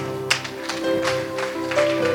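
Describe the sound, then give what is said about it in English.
A standing crowd in Delft claps for the Lord Jesus in a steady rhythm, sharp bursts landing about every third of a second over sustained musical tones that play throughout. “Stand to your feet, everybody. Clap for the Lord Jesus.”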